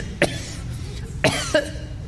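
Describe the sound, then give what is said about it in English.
Three short, sharp coughs: one alone, then a quick pair about a second later, over a faint low background hum. “I have the cough.”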